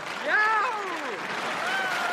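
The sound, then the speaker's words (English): A crowd applauds steadily with dense, continuous clapping while a voice lets out a rising-and-falling cheer near the start, the whole burst sustained and fairly loud for about two seconds. “if we get people cheering.”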